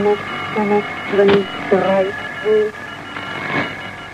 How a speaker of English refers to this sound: Do you think the beeping in the background is significant as well, Zero? That could be a Morse, the Morse code version of the numbers broadcast at the same time, maybe.